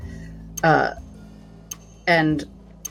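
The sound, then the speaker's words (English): Sharp, distinct ticks of a pocket watch that a woman has just taken out and wound click at a slow, steady pace, about one per second, while two short voiced bursts rise over them. “And the ticking is suddenly louder.”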